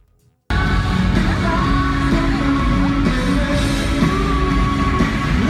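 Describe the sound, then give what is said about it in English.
A large crowd at a Sanders political rally roars and cheers continuously, with yells and whoops rising over a dense, loud wall of voices after a brief silent start. “This is a Sanders rally.”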